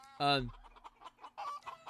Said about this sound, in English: By the way, here's another chicken.